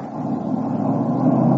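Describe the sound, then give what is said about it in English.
A car carrying Al Benton drones steadily and loudly, building slightly in intensity as it revs and speeds away, with no voices over it. “Is Benton in that car?”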